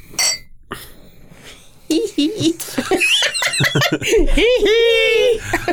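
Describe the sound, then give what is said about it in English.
A quick, bright clink of glasses raised in a toast with a mixed drink made with LaCroix, followed by lively women's voices laughing and giggling together. “So cheers to that, ladies. Cheers. Bottoms up.”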